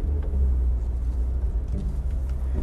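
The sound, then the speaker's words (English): A car engine rumbles steadily from inside the vehicle, a continuous low drone with road noise and a few faint higher ticks, with no talking. “I'm that freaking good in this car.”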